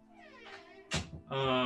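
A door is pushed open with a short, dull thump, between a soft drawn-out meow and a louder, sustained cat meow that follows right after. No one speaks.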